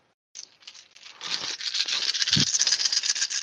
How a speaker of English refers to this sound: All right, rolling 11 dice